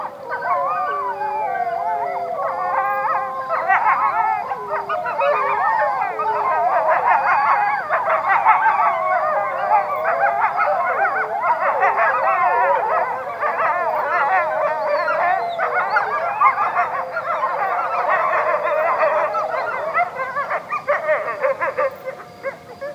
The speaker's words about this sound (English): And then there's a moment in one of them where it seems like there's, like, baby wolves that you can just almost hear them, like, rolling around. They are baby wolves.